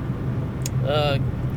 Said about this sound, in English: So I'm trying to read this and drive, and there's semi-trucks coming at me.